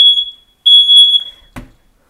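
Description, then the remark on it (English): A kitchen smoke alarm, set off while a pot of noodle water is on the stove, sounds two loud, high-pitched electronic beeps, each about half a second long with a short pause between, then a brief dull thump. No one speaks. “There, waving a towel at the thing usually solves the problem.”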